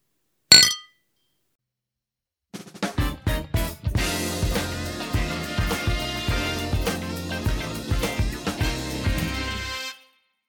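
Beer glasses holding Wild Heaven beer clink together in a sharp, bright toast, then after a short pause a longer run of ringing clinks and chimes follows, fairly loud, with no one talking.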